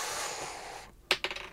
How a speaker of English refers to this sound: could you please roll the dice?